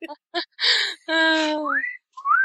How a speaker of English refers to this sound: Damn birds won't shut up. He's in his wooing mode.